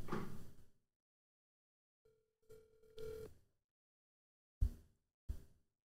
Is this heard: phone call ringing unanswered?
yes